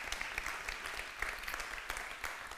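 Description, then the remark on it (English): An audience applauding, a steady wash of many hands clapping with dense, crackling texture and no pauses, moderately loud and without anyone speaking. “Can we put our hands together and just believe that God can still do miracles?”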